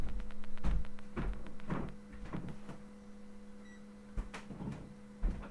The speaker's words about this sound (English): Just a moment, I have to turn on my air conditioner.